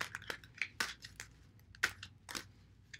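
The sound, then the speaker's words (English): Cards from a Gilded Tarot deck being shuffled, a run of crisp, papery flicks and snaps at an uneven pace, some sharper than others, with no one speaking. “So I'm going to give my cards a little bit of a shuffle, and then we'll take a look at what the collective themes are for this week.”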